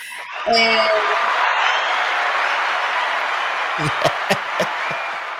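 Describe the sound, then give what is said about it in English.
A small studio side panel breaks into sustained applause and cheering, opening with a loud whoop, the clapping steady, then thinning into a few distinct claps near the end. “You gotta wait for the applause to die down.”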